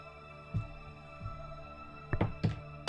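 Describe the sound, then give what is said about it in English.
Dice being rolled for an insight check in a tabletop role-playing game: a few dull, knocking thunks, first two spaced apart, then a quick cluster of three clattering hits near the end, over a steady low hum with no talking. “What are you doing to these dice?”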